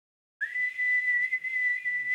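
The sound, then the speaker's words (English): A loud, shrill finger whistle starts abruptly after a brief silence and holds one steady high pitch for almost two seconds, with no talking. “But she does the fingers whistle that I can't do.”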